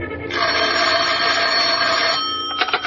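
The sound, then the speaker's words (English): A telephone bell rings loudly and steadily for about two seconds in an outer office at almost 6 o'clock, then gives a few short, rattling bursts as a second ring begins. No voices are heard. “The phone rang, and I thought twice before I answered it.”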